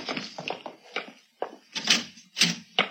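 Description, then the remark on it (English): A door is opened as someone comes in, with a series of rattling clicks and dull thunks, several short bursts of handle and latch noise, with no talking. “Somebody came in.”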